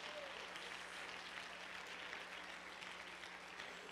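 A church audience claps their hands to the Lord continuously, many hands at once forming a dense, steady wash of crisp patter that holds the same level throughout, with no voices standing out.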